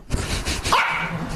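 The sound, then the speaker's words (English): A dog barks in a short burst, loud, with a brief higher yip near the end over a steady background noise. “That sounds like a resounding yes from all the dogs.”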